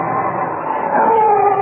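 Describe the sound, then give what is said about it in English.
A dog howls somewhere far down the road, within a few minutes of midnight: one long, wavering, mid-pitched cry that rises slightly and holds steady for over a second, heard alone with no voices. “And then a dog began to howl somewhere far down the road.”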